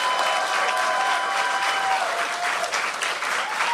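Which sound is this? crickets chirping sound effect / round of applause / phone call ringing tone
round of applause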